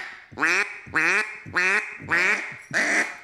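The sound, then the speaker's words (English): Five evenly spaced, flat, raspy quacks blown on a duck call, each short and harmonic-rich, repeating in a steady rhythm with no talking. “Now, if you get a, you get that flat quack, right?”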